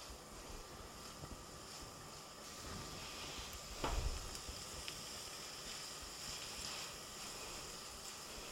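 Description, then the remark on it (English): Onion and garlic sizzle softly and steadily in a pan, a quiet, even hiss with faint crackles and one brief clunk from stirring midway through. No one speaks. “We're stirring the onion and the garlic together, and it's just starting to sizzle a little bit.”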